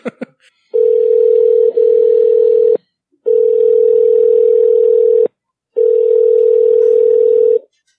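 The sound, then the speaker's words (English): A steady, loud telephone ringing tone of an outgoing call sounds in three long bursts of about two seconds each, separated by short silences, a flat mid-pitched hum with a buzzy edge and no voices. “I said I'm going to call you.”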